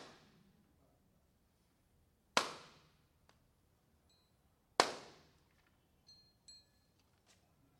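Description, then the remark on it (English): Two sharp, loud thuds of a handmade hammer striking a book, spaced a couple of seconds apart, each ringing off briefly, followed by a few faint light taps. “This is my, 10 years ago, my dear friend Wakabayashi-san died, and it's handmade hammer. It's his hand. Maybe his hand is hitting my book.”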